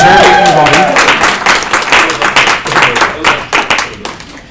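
An audience at a gathering of an association of Scottish lawyers breaks into applause for the benefactor who gave access to the room, a dense patter of many hands clapping that stays loud and steady before gradually thinning and tapering off toward the end.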